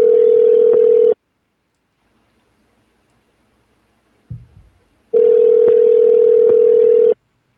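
A steady, low-pitched telephone tone sounds loudly for about a second, stops for several seconds with only a faint click, then returns for another two-second burst as a phone call is placed. No one speaks.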